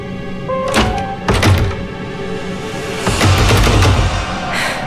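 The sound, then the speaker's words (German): Heavy thuds of a blocked door being shoved and forced by someone trying to get out, several hard, dull impacts in irregular bursts with rattling and scraping between them, loud, with no voices. “Die Tür ist blockiert!”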